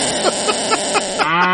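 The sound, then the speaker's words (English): A blown call imitates a cow's moo: a breathy, hissing rush with a few rhythmic puffs, then a short, buzzy lowing tone at the end, loud. “Oh, that's a cow.”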